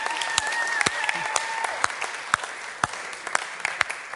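An audience breaks into applause, a dense wash of clapping with a few sharper, louder claps standing out, steady for about four seconds, with a faint whistle-like tone early on.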